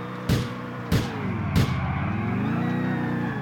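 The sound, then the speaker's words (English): A video game car engine roars steadily as the car performs a J-turn, punctuated by three quick thumping jolts in the first two seconds, then its pitch bends and climbs as the car swings around. No talking. “Perfect J-turn.”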